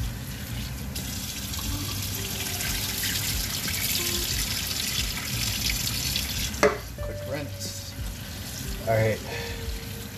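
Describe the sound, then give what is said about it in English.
Tap water runs steadily into a bucket while cooking, with a continuous hiss and rush, broken by a couple of sharp clanks and knocks toward the end. “Put them inside a bucket of water.”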